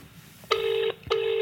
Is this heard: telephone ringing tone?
yes